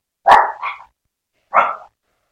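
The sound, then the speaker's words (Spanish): Dogs barking at home, frightened by thunder, fairly loud: a quick double bark, a short pause, then one more sharp bark, with no talking. “Mil disculpas, estamos en casa y los perritos se asustan con los truenos, así que bueno, tuve que detenerme un minutito para ponerlas en un lugar donde se sientan más seguras.”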